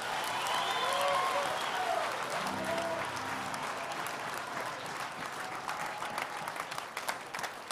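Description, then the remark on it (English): An audience claps hands for the Lord steadily throughout, a dense wash of many overlapping claps with scattered cheering and voices rising above it, loud. “Clap hands for the Lord if you can.”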